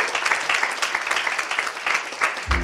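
A crowd applauds with steady, dense clapping that holds at an even loudness for a few seconds, a brief low thump rising near the end.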